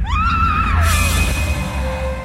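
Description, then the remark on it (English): In an audio drama, a woman's short, high-pitched scream rises and wavers before cutting off as she is struck in the dark, over a heavy low rumble and a sharp hit, with a thin tone lingering afterward. “It strikes her in the gloom so fast she barely has time to scream.”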